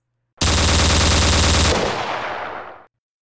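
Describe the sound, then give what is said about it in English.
A loud, rapid burst of automatic gunfire rattles for over a second, then fades into a rolling echo and decay. No voices are heard. “Gunfire! Good, old-fashioned, human, very deadly gunfire.”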